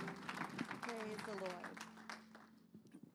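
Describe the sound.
A church audience gives the Lord a hand clap of praise as they are seated, clapping together in a dense, steady patter while voices call out over it, the clapping thinning and fading during the last second.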